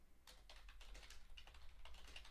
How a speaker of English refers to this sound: I'm sure people listening to this can hear me like clacking on my keyboard like a 1950s receptionist. Because I do this from a desktop, folks. All right, it's a laptop plugged into monitors.